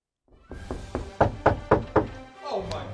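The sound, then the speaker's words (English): A run of about seven firm knocks on a door in a steady rhythm, growing louder toward the end, followed by a brief murmur of voices. “Hey, I think that's a knock you've been waiting for.”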